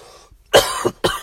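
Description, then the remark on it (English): A person coughs twice in quick succession, harsh bursts with a short catch between them, and no talking around the coughs. “I apologize for the coughing so much.”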